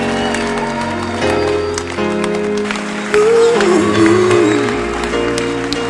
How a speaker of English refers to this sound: Clap your hands now.